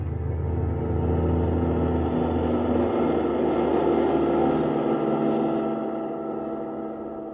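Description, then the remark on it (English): A steady, droning car engine rumbles continuously, its low hum holding even throughout before easing off slightly near the end, with no voices present. “Kismine in the car that needed no roads.”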